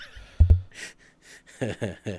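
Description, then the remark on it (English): A drawn-out yawn from a tired person early on a Friday morning: a few low thumps, breathy airy exhales, then a stretched voiced groan with sighing breath. “I'm so tired. I'm yawning.”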